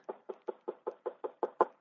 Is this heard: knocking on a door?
yes